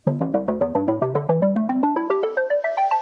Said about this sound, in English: And let's start the episode properly with the jingle.